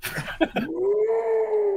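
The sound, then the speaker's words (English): A voice imitates a whale's underwater call: a few short breathy bursts, then one long moaning tone that slides upward and holds steady, drawn out like a low howl. “I'm searching, and then all of a sudden it sounded like whales. And I heard this.”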